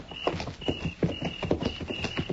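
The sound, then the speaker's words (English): Horse hooves clip-clop in a steady, brisk rhythm, several hoofbeats at moderate loudness, with no voices over them. “All right, we'll leave the horses here.”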